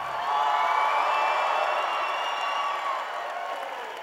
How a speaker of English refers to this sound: Come on, let's take a praise break. Everybody stand up. Let's praise God right now. I don't care what you're going through right now. Lift up your hands. Clap your hands.